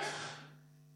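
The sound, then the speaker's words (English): A single sneeze: a breathy, noisy burst that fades away within about half a second, leaving a steady low electrical hum underneath. “Gesundheit.”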